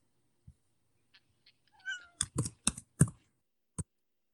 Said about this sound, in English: Yeah, it's my cat. What? I'm trying to get back to my computer. Cat. What's going on? My cat. Cute. Can you hear her?